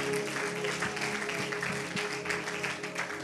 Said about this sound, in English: Can we also give a round of applause